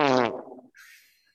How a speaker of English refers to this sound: That's really what I was going for. All fart noises.